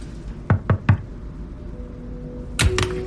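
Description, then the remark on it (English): Three quick, sharp knocks on glass, then a pause of over a second before two more raps in fast succession, with no voices; a person who has rolled their chair away from a desk knocks on the glass. “I roll my chair away from the desk and knock on the glass.”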